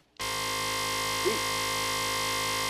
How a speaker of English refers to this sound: And a buzzer on that one.